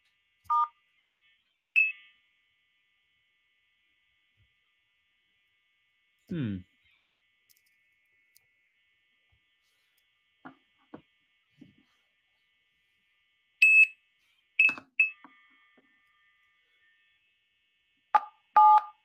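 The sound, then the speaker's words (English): Short, crisp DTMF touch-tone beeps from a phone keypad as a number is dialed directly on the phone, a few at the start and then a quick cluster near the end, separated by quiet gaps and a few faint clicks. “But I actually am going to try regular DTMF. Let me actually just try it directly on the phone.”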